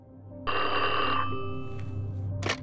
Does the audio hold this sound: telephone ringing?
yes